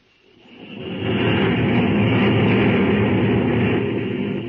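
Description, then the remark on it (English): The old 10-10 locomotive, just tuned up, rumbles along the rails returning from a trial run over the West End, swelling up in the first second into a steady, dense roar heavy in low rumble with a hissing top, holding loud and unbroken throughout. “The old 10-10 is out of the shops, all tuned up for action, and is just returning from a trial run over the West End.”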